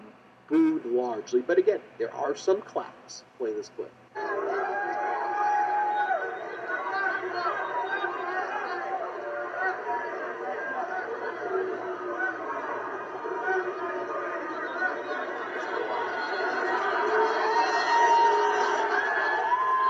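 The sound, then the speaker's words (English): A man speaks for a few seconds, then a large crowd erupts into sustained, loud booing and jeering of Donald Trump mixed with scattered clapping, holding steady and swelling slightly toward the end. “And play this video clip of Donald Trump being booed largely. But again, there are some claps.”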